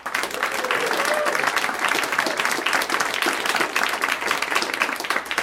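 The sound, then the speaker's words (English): Steady applause from an audience for Chip Pope with I Love Lucy, a dense, even wash of many hands clapping at a constant loudness for the full stretch, with no talking over it. “So, with your applause, Chip Pope, I Love Lucy.”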